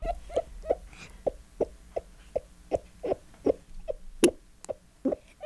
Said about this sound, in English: That sounds like a toad, doesn't it? What is a toad doing on my program about warts?